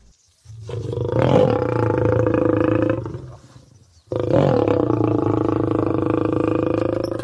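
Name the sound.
lion growling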